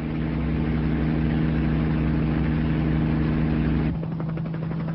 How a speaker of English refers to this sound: For a while, the guerrillas trail the helicopter at sea level. But their hovercraft is no match for Astrid's piloting skills.